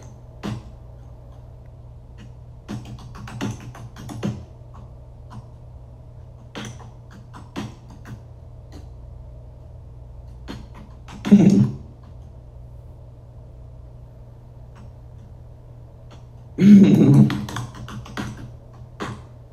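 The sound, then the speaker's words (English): Someone types on a computer keyboard in sparse, irregular bursts of soft clicking over a steady low hum, with two louder, heavier clattering moments partway through. “I'm a keyboard warrior, bro. Like, when it comes to this Twitter stuff, ooh, I got the clap bags, baby.”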